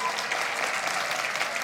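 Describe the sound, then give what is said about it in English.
A church audience at River Church clapping their hands in steady, dense applause to vote for raising the temperature a degree, a bright continuous patter of many hands filling the room at a fairly even loudness throughout. “Who wants to go up a degree? Clap your hands.”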